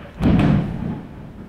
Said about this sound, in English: Thunder and lightning. That was God saying amen, so maybe some of you can also pitch in and say amen.